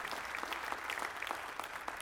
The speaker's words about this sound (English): Won't you give God another hand clap of praise today?